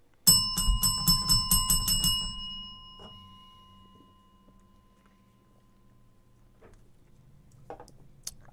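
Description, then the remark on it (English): A bright bell is struck four times in a quick, rapid burst of rings, loud, then its metallic tone lingers and fades away into quiet. “We said the T word like 95 times, so let's hit the bell like 4, and let's just drink 4 times.”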